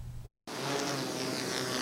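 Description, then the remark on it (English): A drone, flown by an operator high into the sky for a broad-range survey of a target on the ground and among drones being donated to Ukraine, buzzes steadily in flight, a loud, even whine with a humming tone, beginning after a short silence and holding constant to the end. “An operator flies a drone high up into the sky, where it starts a broad-range survey of a target object on the ground.”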